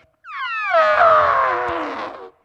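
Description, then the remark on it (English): A person gives one sustained, brassy trumpeting call in imitation of an elephant, rising then slowly falling in pitch over about two seconds, loud with no other sounds around it. “Don't think about their trunks. Don't think about the noise that they make.”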